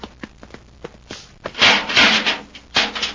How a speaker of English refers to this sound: The study. We'll put them in the study. Yeah, that'll do it. Open the door, Glazer.